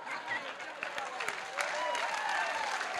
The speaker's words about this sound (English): Give him a clap. He's 91.